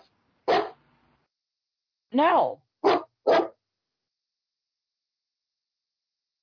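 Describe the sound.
A dog lets out three quick, sharp barks in a tight cluster, fairly loud, just after a single short spoken word, then everything falls silent.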